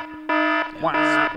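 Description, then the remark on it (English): A spoiler alarm sound effect: two loud, buzzy alarm blasts sound one after the other, each lasting about a third of a second, harsh, with a brief rising tone between them. “all Jonathan Nolan wants to do is say, oh, and put on the spoiler alarm”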